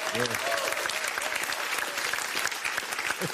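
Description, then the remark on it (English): A show audience claps steadily after hearing the show will be off for two months and back on January 21st, a dense, continuous patter of many hands at an even loudness throughout, with a few faint cheers and voices mixed in underneath. “Are you applauding the 2 months we're off?”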